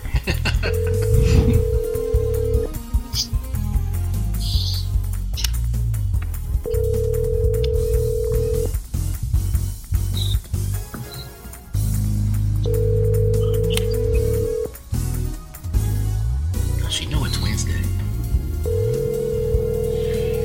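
A telephone ringing tone as a call is placed to a woman: four steady, mid-pitched beeps, each about two seconds long with roughly four-second gaps, sounding clearly over a dense, rumbling background.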